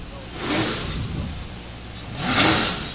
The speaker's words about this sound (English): Couple of revs out of the Piston Knocker B-truck. And it rolls off the line, gets on it hard.